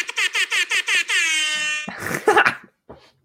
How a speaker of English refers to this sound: I just downloaded the app. Wait, it's a fucking app? Yeah, you don't have the app? No, what's it called? I need that. Just Rap Air Horn. Rap Air Horn?